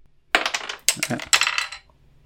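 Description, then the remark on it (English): A die clatters and tumbles in several quick bursts of hard clicks and rattles as it goes off a desk, falls onto a keyboard tray and then falls off that onto the brace, before settling into quiet. “Dice goes wild. Yeah, managed to go off my desk and fall onto my keyboard tray and then start falling off of that onto the brace.”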